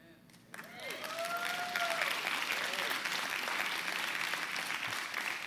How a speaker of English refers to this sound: I hear you clapping, but are you believing? Is that your hands expressing the thoughts of your heart?